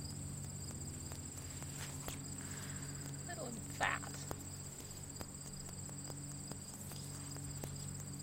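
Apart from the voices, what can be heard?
cricket chirping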